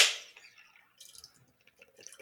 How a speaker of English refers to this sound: I'm drinking a Guinness. Oh, nice. Now I kind of have a process for opening my Guinness, so there might be some banging going on. Okay. All right. So just give me a sec. Might hear some clanging around. Yeah. I'll try not to make a mess everywhere.